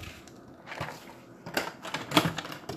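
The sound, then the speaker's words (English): A door opens and closes as someone goes inside, heard as a short series of sharp clicks and knocks from the latch and frame, spaced irregularly over a few seconds with no one talking. “Door opening. Door closing.”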